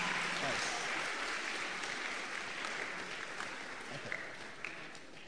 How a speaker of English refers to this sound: Come on, palmas para o Senhor. Oh, clap to the Lord.